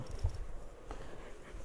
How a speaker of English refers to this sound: Dog keeps coming in and out, and I'm getting annoyed with her. You better get on this freaking bed, girl.